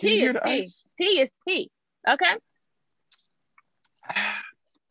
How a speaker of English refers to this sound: Hold up. Let me take a sip of my peach tea.